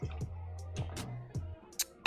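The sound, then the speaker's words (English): Someone takes a swig of water: three low, hollow gulps about half a second apart, followed by a couple of short, breathy bursts as the drink ends. “I already need a swig of water.”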